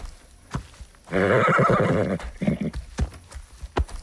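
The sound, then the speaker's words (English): A mare named Shiloh gives a loud, quavering whinny lasting about a second, followed by a short snort, with the hollow clip-clop of hooves sounding before and after. “Yep, I know, but at least there'll be water and hay for you.”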